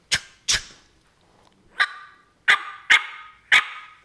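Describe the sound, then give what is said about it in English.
Six sharp, loud cutting notes of a hen turkey made on a diaphragm mouth call, pushed from the caller's diaphragm with lips slapped closed at the end, used to draw a tom turkey's interest, bursting out in an irregular sequence with a short raspy tail on each, and no talking. “where your tongue likes to be placed, where that call likes your tongue to be placed and gives you your clearest, cleanest rasp and hen sound. And then when you cut, it's just a, and I'm bringing it from my diaphragm.”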